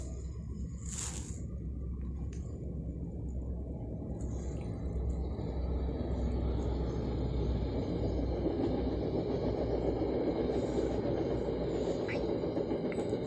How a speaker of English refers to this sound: Oh, hold up. Train coming.